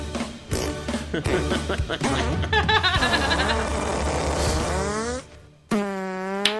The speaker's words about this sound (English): And who could forget everybody's dinner table favourite, the Radetzky Waltz? And of course, yes, he can. Classical farting. Out now.